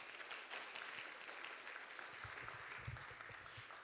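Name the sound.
audience applause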